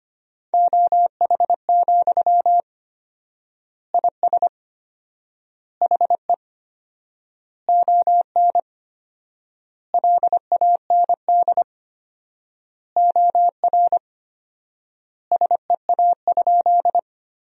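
Fast Morse code beeps at 25 words per minute with 4x word spacing, sending sentences made from the top 500 words: a steady mid-pitched tone keyed in quick dots and dashes, with short bursts separated by long gaps between words. No talking.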